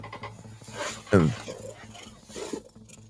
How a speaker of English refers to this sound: That's all I got out of her. I hear a cat. Meow, meow.